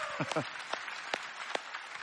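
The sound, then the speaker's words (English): A crowd applauds for the mothers with a dense wash of clapping, a few sharper individual claps standing out, while a voice briefly talks over the start. “And so just another round of applause for our mamas, right?”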